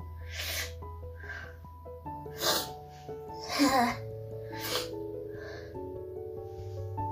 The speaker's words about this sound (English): I need to sneeze.